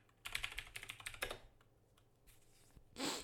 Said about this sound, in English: Maybe I'm actually gonna Google it right now. So excuse the keyboard sound if you hear it.